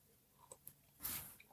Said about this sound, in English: Also, I'm drinking my coffee, so I need to take a sip.